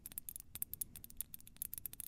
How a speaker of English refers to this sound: It's pretty quiet, but I do like this one. I like the color of it too, purple. It's your glass tapping.